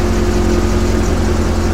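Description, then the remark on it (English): A car engine idles with a steady, low rumble and rhythmic pulsing, loud and continuous with no voices over it, as a shabby car pulls up. “Yeah, there's a car pulling up.”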